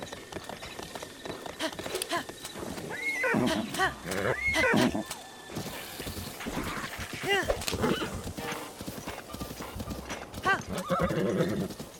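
A ridden horse going along a canyon whinnies several times over a steady clip-clop of hooves, the neighs rising and falling loudly while the rhythmic hoofbeats continue throughout.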